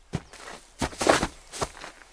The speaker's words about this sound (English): And sometimes it sounds like the birds are providing a laugh track for your mistake. That's the American crow's rattle call. It's uncommon, and researchers aren't sure what it means.